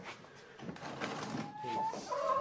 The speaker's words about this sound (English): Put a cock and a hen into each crate just in case two cocks start fighting. It's not as easy as you might think, you know, loading up championship chickens.